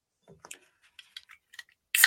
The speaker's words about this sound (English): At 6 o'clock on the dot, I open up my beer.